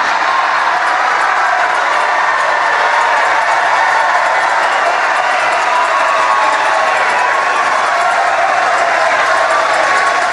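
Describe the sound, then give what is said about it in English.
A large crowd cheers and roars continuously, a dense, steady wall of voices with shouts and whoops rising out of it, loud and sustained throughout without pause. “And I'm told the crowd's enthusiasm sounds pretty impressive.”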